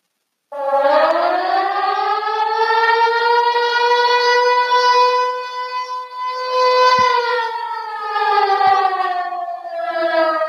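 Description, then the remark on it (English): A loud air horn sound effect, called the Nuclear Air Horn, blares without a break for about ten seconds, a rich, buzzy tone that rises slightly in pitch and then sags toward the end, with no talking. “The thing was called Nuclear, like, Air Horn.”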